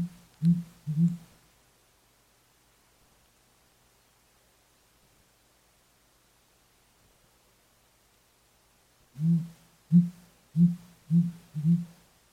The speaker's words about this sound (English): So we're gonna play for you the male call of the sooty grouse.